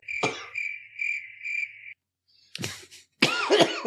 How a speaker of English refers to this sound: Yeah, cough it out, bud. Cough it out.